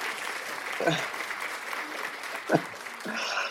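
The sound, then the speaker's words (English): A cheap clapping sound effect: a sparse, thin spatter of clapping rises over a steady noisy hiss, with a couple of brief vocal bursts breaking through partway along. “Because it's very rare these days that we use audio effects, but for Josh Moss's input and for Mickey B, I've got to give a cheap sound effect of a clap.”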